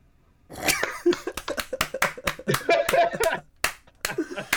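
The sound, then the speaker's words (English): A single person claps their hands in a quick, uneven burst of sharp slaps, with some laughter and voices mixed in around the applause. “I don't know why I started applauding.”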